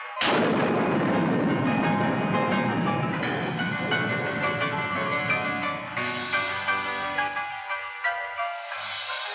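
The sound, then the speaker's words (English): Thunder in the trailer for the thriller film The Child: a sudden loud thunderclap bursts out, then a long, heavy rolling rumble that slowly fades, with a few softer pulsing rumbles toward the end. No one speaks. “Do you think that movie had enough thunder in it? I love all the thunder in this movie.”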